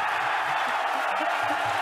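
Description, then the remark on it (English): A crowd cheers wildly as all three Falcon Heavy rocket boosters land, a dense, unbroken roar of many voices that stays loud and steady throughout, with no single voice standing out. “You can hear the crowd going wild.”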